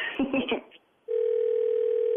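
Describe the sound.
A brief burst of voice fades out, then a loud, steady telephone dial tone begins as a call is placed, humming on unbroken as a single continuous pitch.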